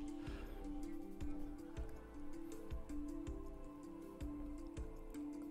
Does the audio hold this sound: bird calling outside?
no